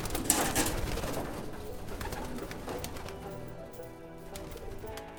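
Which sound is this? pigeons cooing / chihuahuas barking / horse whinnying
pigeons cooing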